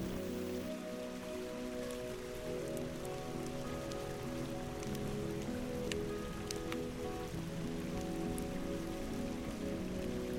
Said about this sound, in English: The sounds of the babbling brook and the crackling campfire add to your feeling of relaxation.